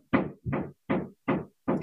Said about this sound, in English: Do you hear the knocking that I warned you about? Yep. Somebody's just above my head hammering. So that's not distracting at all.